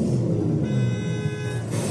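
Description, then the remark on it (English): A single sustained car horn sound effect blares loudly for about a second over a steady low traffic rumble, with no talking. “We have that sound effect.”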